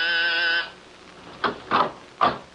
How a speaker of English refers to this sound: And I was just about to leave when my door buzzer sounded.